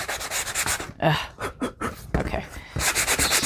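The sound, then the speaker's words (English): Hand sanding along the side of a rough edge to smooth it: quick, repeated scratchy strokes with a breathy, rasping texture, fairly loud, in an uneven back-and-forth rhythm with brief pauses. “Okay, I'm doing my side sanding again.”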